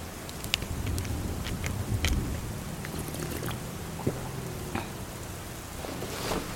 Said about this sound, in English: We nestled up next to the car as the rain continued to fall.